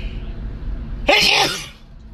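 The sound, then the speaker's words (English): A single sharp sneeze bursts out suddenly after a quiet moment, loud, with a bright hissy blast that fades over about half a second, splattering onto a phone. “I don't have a sneeze button, folks.”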